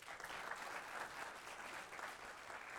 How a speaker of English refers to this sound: Amen. All is saved. Give God a hand clap of praise on today.